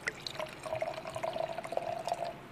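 Dark amber mead, made of water and honey, pours steadily into a glass for a couple of seconds, a continuous trickle with a gently rising pitch as the glass fills, with no voices.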